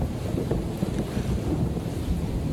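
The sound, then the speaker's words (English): Stormy wind roars steadily, a dense low rumble buffeting the microphone with small gusty surges and no voices, during a rainy storm while boarding a plane. “This is me getting on the plane, the haiku that I wrote before it took off.”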